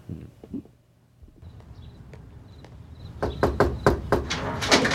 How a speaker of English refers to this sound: And then they knock on the mom's door.